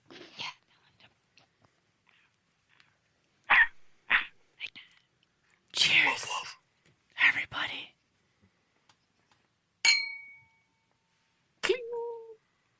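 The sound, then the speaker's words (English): A dog makes soft, scattered noises: breathy, whisper-like huffs and snuffles, then a couple of brief, thin whines near the end, with silence between. “That was a whine and a whisper.”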